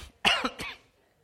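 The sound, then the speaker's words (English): A short burst of dry coughing, three quick hacks in a row with a rasping, breathy edge, then silence. “I was hoping that would make you thirsty instead of me cough.”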